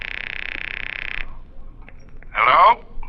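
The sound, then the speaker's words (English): A telephone rings with a steady, trilling electronic tone for about a second, then falls silent before a second, shorter warbling burst. It is fairly loud, with no talking over it. “It's ringing. Take it.”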